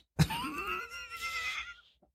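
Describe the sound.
A person's voice mimics a horse's whinny in one loud, quavering burst of about a second and a half. The pitch wavers and then trails off, with no other talk.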